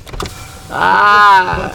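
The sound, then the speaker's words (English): An electric car window motor whirs for under a second, a loud, steady buzzing whine that bends slightly in pitch before stopping abruptly, with only faint rustling before and after. “Don't touch the windows.”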